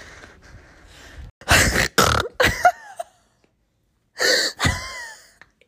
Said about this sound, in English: Okay, so we're replaying this and, like, listening to us, and... quite embarrassing. We are breathing so heavy. Like we need that. We need some exercise, apparently. We went up maybe, like, two flights of stairs, maybe, and we're huffing.